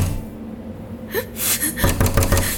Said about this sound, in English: Finally, they reached the end of the tunnel and a round door with a large copper knob holding a ring in the middle of it. They anxiously knocked on the door.